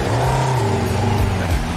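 A motorcycle engine revs loudly, its droning pitch swelling slightly and then dipping near the end of a brief, continuous burst with no voices.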